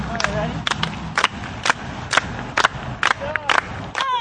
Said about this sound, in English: Can the Hot Pack do a cheer for me?